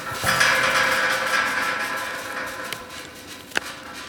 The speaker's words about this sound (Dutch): We staan hier voor een hek, dat moet even open.